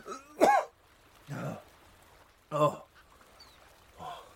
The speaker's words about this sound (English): He tried to speak, but was interrupted by a fit of violent coughing that caused his whole body to jerk and shudder.